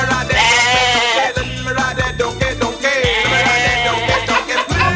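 Goats bleat loudly and repeatedly, their wavering cries overlapping in a noisy, continuous chorus up close, with no talking.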